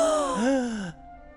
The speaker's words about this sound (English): They all say, I take it from your gasp that you're afraid of her.